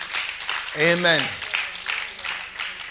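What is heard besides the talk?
audience clapping hands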